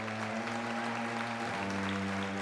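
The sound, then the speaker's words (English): An audience of an order called the Ordo Vitalis applauds as a new initiate's blindfold is taken off at his initiation, in a dense, steady wash of clapping that holds for the whole stretch, with a low sustained droning tone running underneath. “The unholy congregation gave a thunderous applause as the initiate's blindfold was finally taken off.”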